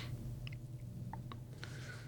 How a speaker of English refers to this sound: Take the gum out. Oh, sorry, guys. Yeah, it's like prison here. You're not allowed to chew gum. It annoys the listener. My bad.